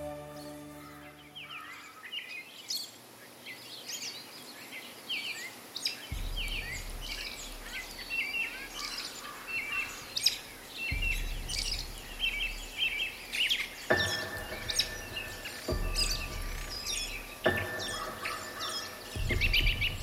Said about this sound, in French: J'ai donc décidé de faire cette reprise, la marche de Brian Boru, comme si on était en plein pique-nique dans ma cour. Et vous allez voir que les oiseaux s'en sont donnés à cœur joie cette journée-là.